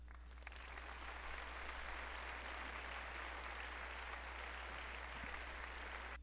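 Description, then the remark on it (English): A GarageBand recital crowd applause sound effect: a dense wash of many hands clapping at an even, sustained level with no voices, starting abruptly and ending abruptly. “I'm going to do the recital crowd applause.”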